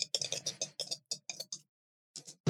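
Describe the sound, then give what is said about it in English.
Two ten-sided dice, one blue and green and one bronze and green, clatter across a hard tabletop in a quick, uneven burst of sharp clicks that trails off. A pause, a couple more taps and a firmer knock follow. The dice land on a 4 and a 7. “Put a hole through my table here with these dice.”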